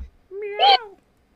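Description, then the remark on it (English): A person imitates a cat with a single drawn-out vocal meow, rising and then falling in pitch, fairly loud, with silence before and after. “Meow.”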